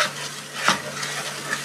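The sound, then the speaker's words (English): Butter melting in a pan while making fudge, with a soft, steady sizzle, broken by a few light scraping stirs of a utensil against the pan. “I'm gonna do this till all the butter melts. Until they start seeing a few little bubbles in it.”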